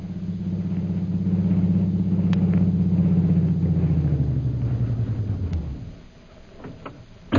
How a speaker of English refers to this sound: Meanwhile, back in Mandalay, a taxi drives onto the flying field, its shades closely drawn and its lights dimmed.